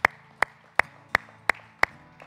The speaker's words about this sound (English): Let's give the Lord a round of applause.